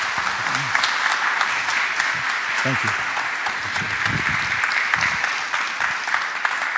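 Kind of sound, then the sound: crowd, audience applause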